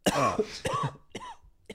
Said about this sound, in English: That was like a cough that when you're on the phone with your manager, it's like, I can't come into work today.